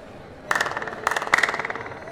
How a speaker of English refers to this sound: But if you go beyond 7 feet, you can just hear that sound. Only. Just there. Not here. Yeah. Yeah, it's just the clap. No echo.